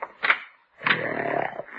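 A large dog snores under a bed in a child's room with a rough, rasping rumble: a short snort followed by a longer, drawn-out grating breath, loud and alone with no talking.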